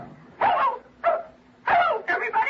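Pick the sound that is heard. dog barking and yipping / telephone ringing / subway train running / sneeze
dog barking and yipping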